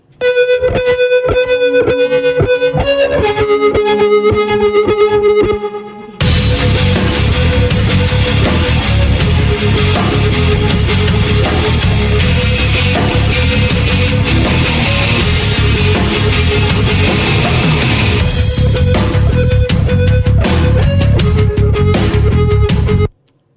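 A hard rock song opens with a few seconds of clean, ringing melodic notes, then heavily distorted guitars and pounding drums crash in and carry on loud and dense to the end.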